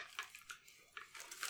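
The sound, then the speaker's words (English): Soft, irregular crinkling with crisp bursts of crackle that come and go over a second and a half, fairly quiet, with no voices. “So you wonder what all this crinkling is.”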